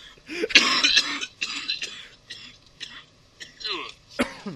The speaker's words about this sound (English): Now you're making me cough. Cough break, everyone.